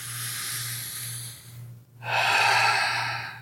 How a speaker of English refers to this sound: Another breathwork example is a deep inhalation. Take a deep breath. It's as simple as that.